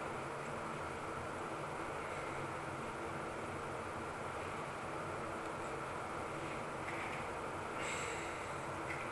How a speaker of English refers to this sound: I'm just breathing. I just take one deep breath in and one, and then let it out.